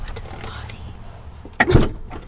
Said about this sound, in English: That is the van door opening. We are legit in a minivan. It's no joke.